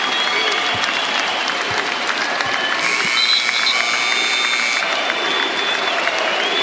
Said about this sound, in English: Fans recognize that through chanting Kobe, and now the game will actually begin.